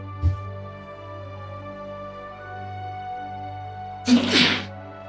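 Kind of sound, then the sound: human body sound, sneeze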